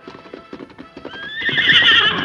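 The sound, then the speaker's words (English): Steady hoofbeats of a horse approaching on a trail clop along for about a second, then the horse lets out a loud, shrill whinny that swells and carries to the end, with no voices. “The Lone Ranger spoke soothingly to the horse, calmed him, and then turned him around on the trail.”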